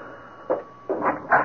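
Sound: knocking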